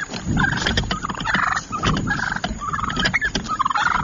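Several wild turkeys gobble over one another in a loud, continuous burst of warbling calls, with rapid pulsed bursts and no talking, as the turkeys come at and attack the person filming them in New Jersey.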